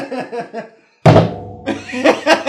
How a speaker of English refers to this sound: I had my eyes closed when you did that, by the way. You should have waited for me to open them and then notice before slamming your hand down on the table in frustration.